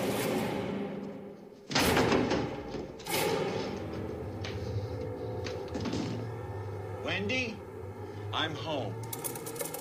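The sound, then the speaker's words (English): An axe chopping into a wooden door for a film scene: two heavy splintering blows followed by lighter knocks and creaking wood. Muffled voices run faintly underneath. “And of course, there were six or eight doors standing by, and each door chopped through quite differently.”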